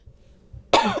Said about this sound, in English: The minute I start talking again, I cough, of course.